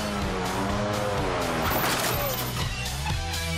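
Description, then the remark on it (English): Cars being test-driven roar past with revving engines and squealing tires, a loud, continuous burst of motor noise and skidding with no clear pauses. “This week, they get to test drive cool cars.”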